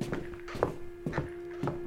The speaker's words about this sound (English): Then the sound of heavy footsteps leading away.